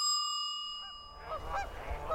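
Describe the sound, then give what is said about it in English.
A sustained ringing tone fades away, then a flock of geese flying south honks in several overlapping calls, with a low rumbling background underneath. “Birds started flying south.”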